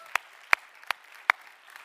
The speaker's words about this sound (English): Somebody clap your hands to Jesus this Sunday afternoon.